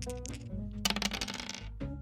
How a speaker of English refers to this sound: Let me roll those dice now. Give me a second.